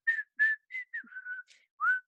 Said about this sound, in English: I couldn't raise the confidence to say hello, so I just whistled the Leroy Rossini tune.